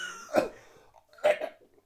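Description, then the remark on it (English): Two fairly loud coughs about a second apart, each a short harsh burst with a slightly throaty edge, followed by quiet. “Just coughed up a cool play for a ball there.”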